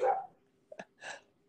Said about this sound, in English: Oh, I hear something in the background. There's a doggy in the background. That's Sophie's, like, third predecessor. That's Tilly.